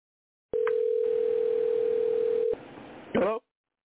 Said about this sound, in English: I'm hearing the phone ring.